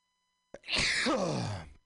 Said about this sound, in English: I have to sneeze.